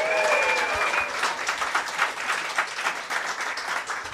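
A crowd gives a welcoming round of applause, clapping steadily for about four seconds, a dense, even patter of many hands with a few faint whistles at the start, fading slightly toward the end.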